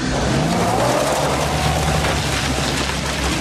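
Bobby Ray's truck swoops in with a roar, a thin tire squeal riding over loud, steady engine and road noise, no voices, the rush holding constant for a few seconds.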